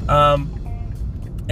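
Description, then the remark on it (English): A steady, low road rumble fills the cabin of a moving car heading to Jim's Restaurant at the corner of Fredericksburg Road and Hillcrest to pick up breakfast at 11:15 in the morning, with a man's voice speaking briefly near the start and again at the very end. “And I'm in the car again, which I usually am when I record these things.”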